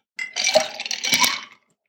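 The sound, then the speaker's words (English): Ice cubes clink and rattle into a mixing glass holding a cocktail with cherry liqueur and absinthe, in a quick cluster of bright, hard knocks, with a louder burst of clatter near the end before it stops. No voices. “Finally, we're going to add some ice.”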